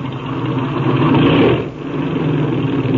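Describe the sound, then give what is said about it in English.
A small aircraft engine is run up before a flight to check how it is firing, loud and steady, a dense droning roar with a brief dip in pitch midway before settling back to a constant hum, with no voices. “Now then, we'll run this engine up and see how she's hitting.”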